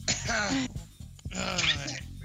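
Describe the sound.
Two drawn-out, raspy coughs, loud, each lasting over half a second with a rough, voiced, exaggerated hacking quality and a brief pause between them.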